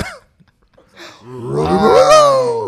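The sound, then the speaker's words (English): A female dog wheezes in one loud, drawn-out breath that rises and strains for over a second, after a brief quiet pause and a short sound at the start. “We went from a serious topic to talking about my damn dog, bro.”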